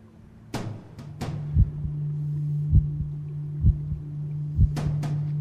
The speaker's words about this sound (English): Hear heartbeat. Here it comes.